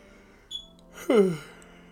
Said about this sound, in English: Sorry, I'm yawning.